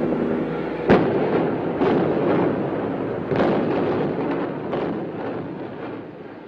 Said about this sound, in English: Today is demolition day at Pruitt-Igoe. Here in the late afternoon, with weather moving in from the west and helicopters hovering above, Door Wrecking Company will explode the supporting columns from an 11-story vacant high-rise.